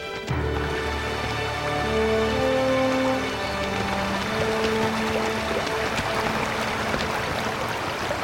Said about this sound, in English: How can we cross this river safely? Please, God, give me an answer. The water's too fast.